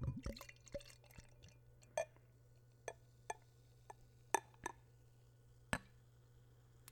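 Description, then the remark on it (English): A hazelnut beer with bourbon notes is poured from a bottle in a short, quiet glugging burst, followed by a scattering of soft drips and fizzy ticks over a low steady hum, with no voices. “Okay, I'm gonna pour this beer.”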